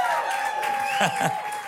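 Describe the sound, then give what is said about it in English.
A crowd at V1 Church, picked up by crowd mics, claps and cheers to welcome online viewers in a steady, dense wash of noise, with scattered shouting voices rising through it and a faint sustained tone humming underneath. “Anyways, can we just put our hands together and welcome everybody who's watching online, our global V1 Church family?”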